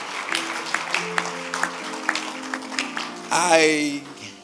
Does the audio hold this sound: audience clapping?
yes